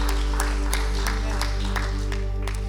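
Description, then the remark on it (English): A group claps hands in a steady rhythm, roughly three claps per second, over a sustained low musical drone, keeping time with a sung worship song of praise. “With the clapping of our hands, rejoicing of our hearts, Lord, we give thanks to you.”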